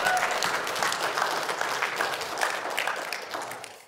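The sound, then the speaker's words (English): A crowd claps steadily for about four seconds, a dense wash of many hands applauding together before tapering off at the end, with a faint murmur of voices mixed in, as listeners say amen and clap their hands at a preacher's call. “If you know that's good news, say amen and clap your hands, because the Lord our God is awesome.”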